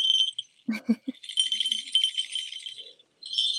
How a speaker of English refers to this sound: But I mean, this is a small one, but I've got one of about 50, and it's just so loud. Wow. They're like little jingle bells, right? Yeah, but even like one of them, well, they're all making a racket now.